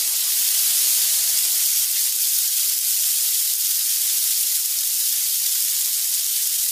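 A steady, loud sizzling hiss, like food frying in a hot pan, continues without a break for several seconds with no voices.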